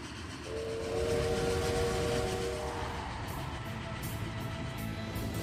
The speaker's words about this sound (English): Train?